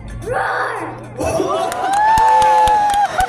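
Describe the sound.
A child from Mexico imitates a lion with a long, rising, shouted roar of about two seconds, loud and strained, after a brief murmur of crowd noise and voices.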